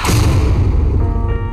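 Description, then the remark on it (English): A single loud gunshot that hits a woman cracks at the start and rolls off into a deep, booming low rumble that lingers and slowly fades. No voices are heard. “She's been shot.”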